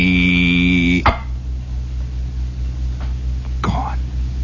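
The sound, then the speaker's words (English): A voice imitates a fly buzzing down at a small green clawed creature with a steady, nasal buzzing hum for about a second, then stops at a sharp click. Low background hum follows, broken by one more brief pop. “And then a fly would come down and start to buzz him.”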